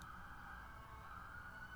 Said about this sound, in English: Oh, the siren? Yeah. It's so extreme.